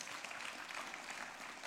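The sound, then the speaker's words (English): A crowd claps for the Lord steadily, a dense wash of many overlapping hand claps holding an even level throughout, with no voices standing out. “You guys out there today, give the Lord a clap if you're out there today.”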